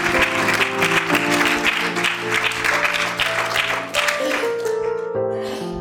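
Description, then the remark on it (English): A church audience claps their hands to the Lord in a dense, sustained burst, the applause loud while sustained organ or keyboard tones hum underneath, tapering off toward the end. “Would you clap your hands to the Lord and just give the Lord your undivided attention over the next few moments?”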